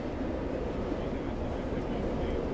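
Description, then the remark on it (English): A steady, continuous low rumble of a train running along the rails, fairly loud and unchanging throughout, with a dense roar filling the low end. “Are you gonna get off the train when we get there?”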